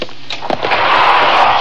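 door opening

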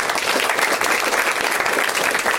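audience applause

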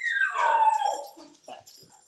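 dog whimpering and howling

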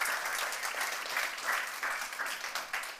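audience hand clapping

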